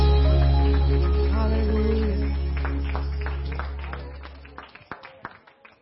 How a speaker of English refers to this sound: Somebody give the Lord a big clap of worship.